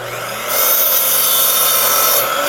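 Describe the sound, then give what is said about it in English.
A miter saw drawing around 1,500 watts, plugged into a Ford truck's battery pack, whines steadily, then bites into wood for about two seconds, its loud, bright, rasping cut filling the highs before easing back to the motor's hum. No one speaks. “This is a miter saw.”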